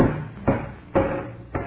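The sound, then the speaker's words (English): Three dull, hard knocks on wood, roughly half a second apart, as a just-sawed piece of wood around the doorknob is struck out of a bathroom door, with a low rumbling background between blows. “The piece of wood around the doorknob that I just sawed.”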